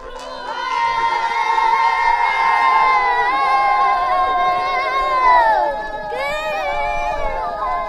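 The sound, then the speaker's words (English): A group of child riders, aged 6 to 11, sings the Gingla, an encouraging song for the horses as they warm them up: a loud, sustained, high-pitched chant together, voices holding long notes that slowly slide in pitch, then a fresh rising phrase begins near the end. “It's called Gingla, and it's performed by the riders, all kids from age 6 to 11.”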